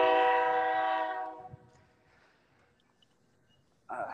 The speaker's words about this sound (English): Well, that train's getting ready to come through, so I apologize if it gets loud.